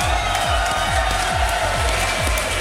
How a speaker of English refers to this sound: I thank you so much, guys. A big round of applause